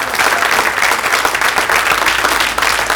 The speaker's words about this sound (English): Every mother in the church, please stand up, and we want to acknowledge you and clap for you. All mothers, give them a big round of applause.